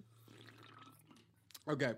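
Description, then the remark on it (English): A soft slurping sip of a drink, picked up loudly by the drinker's microphone, with faint liquid sounds over a low steady hum, followed by a short burst of a person's voice at the end. “Ew, I can hear myself sipping this because my mic.”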